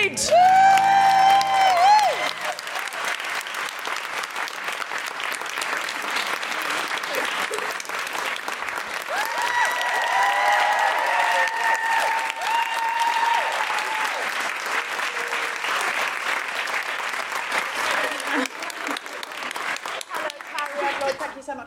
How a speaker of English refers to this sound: Very slow. It took Cariad a while to get to the stage. That's why I started. I didn't want the applause to die